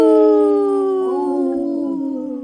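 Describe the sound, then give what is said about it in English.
Several voices howl together in imitation of a wolf pack, long overlapping wails that slowly slide downward in pitch, loud, filling the moment without any talking. “Howl, you guys. That was awesome.”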